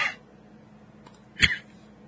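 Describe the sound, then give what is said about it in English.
A single sharp, moderately loud cough cuts through otherwise quiet background, following a brief, softer burst at the very start. No one speaks. “No, I was coughing.”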